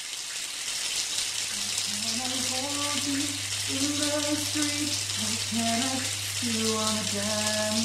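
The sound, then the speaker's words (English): A cold shower runs steadily, a bright continuous hiss of spraying water, while someone hums or sings wordlessly over it and a low steady hum sets in after a second. “Right, I'm off for a cold shower.”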